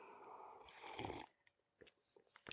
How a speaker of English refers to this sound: For those of you who are watching, I'm using my, awesome R cup that my wife got for me, which I love. So, before we get rolling, got to take a sip of my preferred beverage. You guys know the routine.